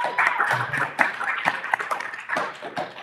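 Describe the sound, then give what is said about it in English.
A round of applause from an audience greeting a panelist, a vice president of engineering, as he is introduced: many hands clapping together in a steady, crackling patter that holds at moderate loudness for about three seconds, with no voices on top. “Feel free to give them a round of applause.”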